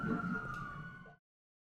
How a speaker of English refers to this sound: Can you hear this? Yeah. Well, there's the fucking... there's a siren outside,